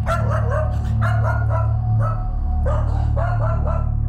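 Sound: dog barking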